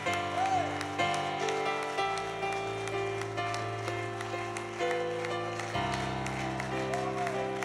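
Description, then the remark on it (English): An audience claps steadily over sustained keyboard or organ chords, the crowd's applause a continuous patter of many hands beneath the held musical tones. “Keep clapping.”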